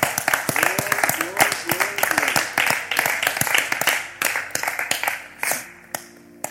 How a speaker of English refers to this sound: One last time, clap your hands and give God praise.